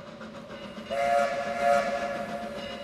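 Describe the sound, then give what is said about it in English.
A steam train rumbles along as its whistle sounds in two steady, bright blasts, one around the middle and another shortly after, over a continuous low mechanical drone. No one speaks. “Then, railroads came to Los Angeles, with the completion of the Southern Pacific Line in 1876.”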